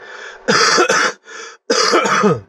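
Two loud, rough coughing fits, each a harsh throaty burst with quieter wheezy breaths before and between them, and no talking.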